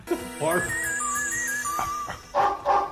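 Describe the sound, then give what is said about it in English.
High, wavering whistle-like whines lead into a couple of short, sharp dog barks near the end, clear, with no talking over them. “The dog whistle is going.”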